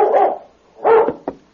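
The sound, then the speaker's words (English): A dog barks loudly, two full barks followed by a short, sharp yip, with brief pauses between them and no voices, as it races out from between two buildings and startles a horse. “Then a dog raced from between two buildings and startled the horse.”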